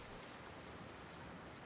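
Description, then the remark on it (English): Rain falls steadily in a continuous, even hiss of countless drops with no pauses, soft and fairly quiet, with no voices. “Cool, but not frigid winters deliver life-giving rain.”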